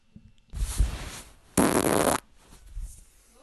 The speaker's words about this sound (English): Could you please replay fart number one? We will replay fart number one. Here it is again for the second time. Fart number one.